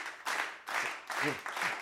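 A short burst of a crowd applause sound effect, a dense wash of clapping that swells in several loud waves, with a brief cheering voice mixed in partway through.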